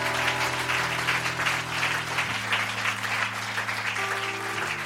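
A crowd applauds steadily for about five seconds, a dense, even wash of clapping. Sustained low keyboard chords hum underneath and change pitch partway through.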